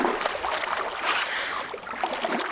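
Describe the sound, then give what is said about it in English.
Water sloshes and splashes in a clean toilet bowl, steady for a couple of seconds, with a busy, churning texture and no voices. “splashing. This Todd's toilets are so clean. This is the same as a tub.”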